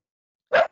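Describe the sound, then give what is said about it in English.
A dog named Loki gives a single loud bark after a moment of silence, followed by a shorter, softer yelp-like bark trailing right behind it. “my dog out here trying to be my security guard.”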